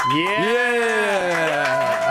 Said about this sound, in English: You know it's good when you get a control room cheer.